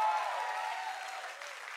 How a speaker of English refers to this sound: If you believe that, I want you to give God a big clap of praise right now.